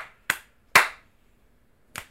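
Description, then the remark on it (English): Three sharp hand slaps at an uneven pace, given as a rating for a song, the second the loudest and fullest, then a pause before a lighter final slap. No one speaks. “So, how many slaps do you give it? And snaps.”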